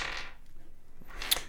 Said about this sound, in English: You roll the dice.